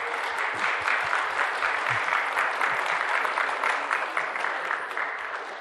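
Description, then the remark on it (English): A room full of people applauds steadily for several seconds to welcome two people invited up to join the speaker, a dense, even patter of many hands clapping at once, sustained without pause. “And if you would make them feel a little comfortable by maybe applauding.”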